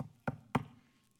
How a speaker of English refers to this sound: And he says, I'll knock.